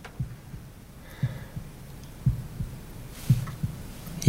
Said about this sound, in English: Heartbeat.